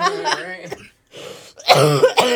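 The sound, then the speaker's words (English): A person coughs several times, a raspy, throaty burst followed by a short breathy pause and then another loud fit of harsh, voiced coughing. “Instead of snorting, I'm coughing.”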